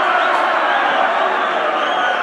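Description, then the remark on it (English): A large stadium crowd at a Millwall football match boos player number 39, a loud, sustained wall of jeering voices that holds steady from start to finish without a break. “Crowd don't like him.”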